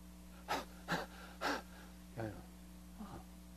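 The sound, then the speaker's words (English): A voice imitates heavy, rasping breathing: five loud, breathy gasps in a steady rhythm, the last two softer and more throaty, over a low steady hum. It imitates two people breathing heavily in unison a few tents away in a field in the Dordogne, France, in the middle of a summer night. “And then, a few tents away, I could hear this heavy breathing.”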